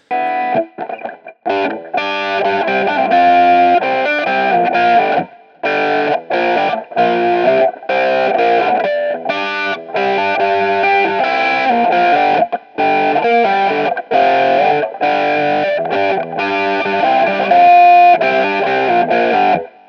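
An electric guitar being tuned through heavy distortion in Amsterdam on a rainy day, loud buzzing notes ringing out in choppy bursts separated by brief silences, with no talking.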